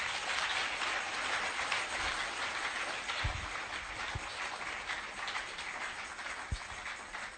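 An audience at a church service claps steadily for several seconds, a dense, even wash of many hands with no pauses and no voices, holding at a constant level throughout.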